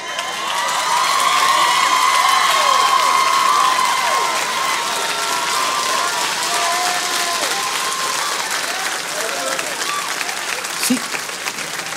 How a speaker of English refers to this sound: man, why are we clapping for a man and da da da da? It's not about him. It's about God.